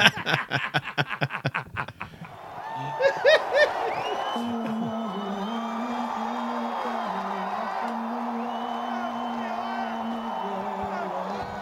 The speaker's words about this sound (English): It's a lot of fans yelling here